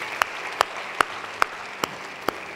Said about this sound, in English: Let's put our hands together and welcome new believers into God's family. God bless you.